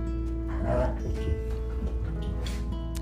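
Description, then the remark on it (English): Dogs play indoors, with short yips, low growly scuffling and a soft whimper breaking through a steady hum, continuous over a few seconds. “And of course the dogs are going to play in here.”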